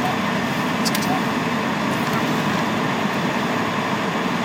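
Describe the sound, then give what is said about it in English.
A bus rumbles by, a steady, loud engine and road roar that holds level throughout, with a couple of brief high rattles near the start. “Ooh, the bus.”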